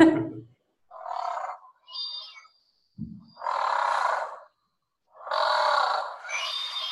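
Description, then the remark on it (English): A blue duck calls in a series of separate bursts, mixing husky, growling rasps with high, thin whistled tones; a short low grunt falls between them, and no one talks. Blue ducks whistle rather than quack; this pair lives out from a trout centre and has seven ducklings. “And that's the sound that they make. They don't quack.”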